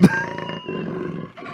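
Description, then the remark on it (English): A jaguar roars in a deep, rough, sustained growl with a grainy, belching texture, pausing briefly before continuing, loud and with no talking over it. “This is an actual sound of a jaguar.”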